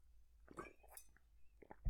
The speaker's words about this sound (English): I hope you got some good ASMR there. Well, I had to take a quick swig of water.